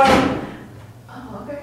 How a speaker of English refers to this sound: They probably shut the door, that's why.